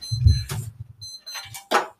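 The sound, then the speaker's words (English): An alarm clock rings in two bursts of shrill, high-pitched electronic beeping, broken by brief pauses, with low rumbling and sharp rustling bumps. “This is from college, and I still don't know how to turn off the alarm.”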